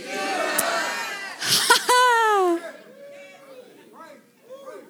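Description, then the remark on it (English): A church audience yells out "thank you, Jesus" together in a loud, ragged burst of praise during a morning service. One drawn-out shout rises above the crowd before the voices fall away to scattered murmurs. “Can somebody yell, thank you, Jesus?”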